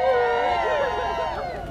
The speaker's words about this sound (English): So I think at this point, I want everyone to give a little cheer. Woo!